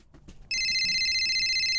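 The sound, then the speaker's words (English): A phone suddenly starts ringing loud, a steady electronic trill that begins abruptly after a brief quiet moment and continues on without pause. “Anyway, it was a timely moment that we chose to leave, as that was when we got a phone call.”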